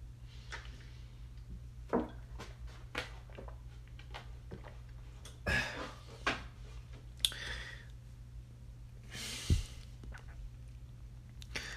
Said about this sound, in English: Hold on, let me drink some water before I start to go in. Hold on, give me a second.